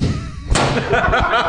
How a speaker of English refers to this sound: Whoa, mic drop. Holy shit. Mark drop. Yeah. Literal mic drop. Yeah.